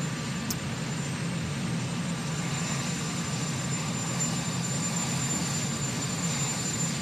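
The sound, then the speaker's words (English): A helicopter engine runs with a steady, rumbling whine as a man walks to the helicopter past a Marine, droning at constant loudness throughout without letting up, and no voices can be heard over it. “Let's go to, he's walking to the helicopter, and he's got a Marine in front of him, and this happens.”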